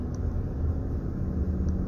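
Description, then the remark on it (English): Steady low road rumble and engine drone from inside a moving truck while the driver checks the tire pressure, constant and fairly loud throughout, with no talking. “I'm checking my tire pressure while I'm driving because I feel like I'm...”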